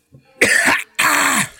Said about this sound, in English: Oh, boy. Last week it was burping. Now it's choking and gagging.